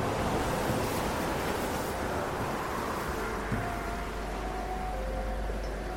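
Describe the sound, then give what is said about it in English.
A steady, dense, fairly loud roar of surging river water and waves fills the whole stretch with a constant churning wash and no voices, as a great wave crashes down on 600 men and sweeps them away. “of the river reared up in a great and tumultuous wave, which crashed down upon the heads of the 600 men, sweeping them away.”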